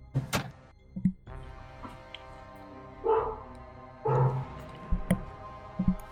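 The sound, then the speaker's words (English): A dog barks and yelps in a few short, scattered bursts at moderate volume, mixed with occasional soft knocks and thumps, as its owner lets it out. No one speaks. “Hold on, let me let my dog out.”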